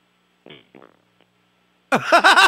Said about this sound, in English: Did you just fart? Sounded like you might have farted.